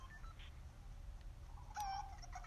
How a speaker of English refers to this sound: It's a chicken that's been chromed and it just sounds really bad.